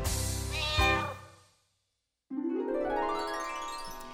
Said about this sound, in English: the hen goes chimmy chuck, cat goes fiddle-i-fee.